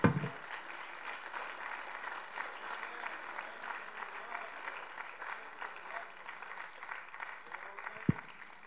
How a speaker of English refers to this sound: And as we do, if you're thankful for the love of God in your life, can we just give the Lord a hand clap of praise today?